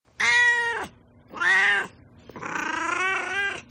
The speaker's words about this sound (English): Well, let's move on to Duarte's corner and just see what my beloved cat Duarte has to say about this.